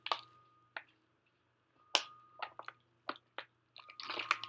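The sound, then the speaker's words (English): Sips and gulps of water, a string of short, wet mouth sounds and swallows at an uneven pace, quiet, with no talking. “Whew, that water is good.”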